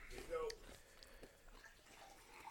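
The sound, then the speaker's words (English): Water is poured from a pitcher in a short, quiet trickle with a faintly rising pitch, set against low room noise and some indistinct voice activity. “You're going to have to pass that pitcher of water.”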